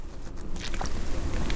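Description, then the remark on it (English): A boat moving across open water in wind, with steady low rumble, gusty wind buffeting the microphone and faint splashing, continuous throughout, with no voices. “There's a large group of people, and they would have taken boats like this, and they're all coming across because this was that area where they would use boats to get across that upper Galilee very quickly.”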